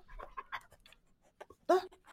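animal, dog panting and whimpering

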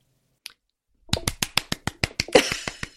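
human body sound, hands clapping

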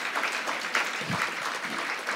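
crowd, audience clapping

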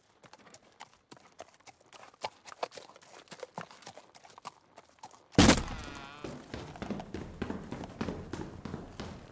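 animal, horse hooves clip-clopping

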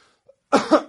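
human body sound, throat clearing

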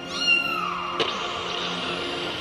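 animal, kitten meowing

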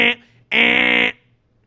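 vehicle, car horn honking

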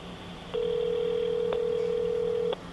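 signal or alarm, telephone dialing tones

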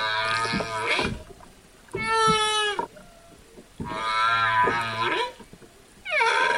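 animal, whales singing underwater

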